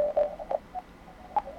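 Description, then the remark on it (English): Morse code CW tones on amateur radio: a single pitched beep keyed on and off in short, irregular dits and dahs, fairly faint over a soft hiss of background noise, with automatic noise reduction turned on in the receiver. “Turn back on automatic noise reduction, and you can see the background noise practically disappears, and all I hear left is the CW tones.”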